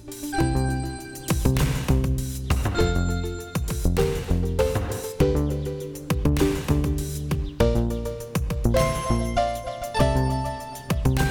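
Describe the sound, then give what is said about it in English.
A bright, synthetic bell-like chime tinkles through a repeating melodic jingle, with sharp metallic strikes ringing out clearly and steadily for several seconds, no voices present. “Yes, listeners of the podcast will know that that fake bell sound means that we have a special episode again this week.”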